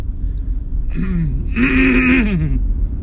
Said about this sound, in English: Sorry there, folks. I had to clear my throat. I had a wee little frog in there. And he was croaking.